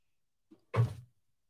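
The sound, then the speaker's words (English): A chair scoots forward across the floor: a faint knock, then a short, fairly loud scraping thud with a heavy low rumble lasting about a third of a second. No one speaks. “I just need to scoot my chair up.”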